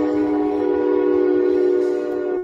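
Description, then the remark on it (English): A train horn blares in one long, steady blast over the rhythmic clatter and rumble of a passing train, loud, cutting off abruptly after a couple of seconds. “Who's got the train, man?”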